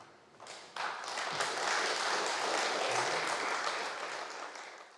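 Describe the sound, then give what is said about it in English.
A crowd at a church meeting applauds at length after a speech about church safeguarding, a dense crackle of many hands that swells quickly after a softer start, holds steady and loud, then eases slightly toward the end. No one speaks. “After lengthy applause, the members of the Archbishops' Council tried to explain what had happened and how the dismissal of Reeves and Sanghera did not mean that they were opposed to independent scrutiny of their safeguarding.”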